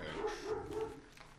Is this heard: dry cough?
no